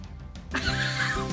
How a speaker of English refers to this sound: There's really a lawnmower outside.